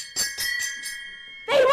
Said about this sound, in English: Call a fire brigade! Cried Mrs. Prothero as she beat the gong.